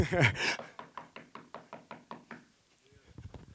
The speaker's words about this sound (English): Knocking on the window.